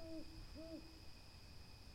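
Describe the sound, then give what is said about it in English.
An owl hoots twice in the distance in a soft, rounded rhythm, quiet, with a faint steady insect-like hum lingering in the still night air and no voices. “An owl hooted in the distance.”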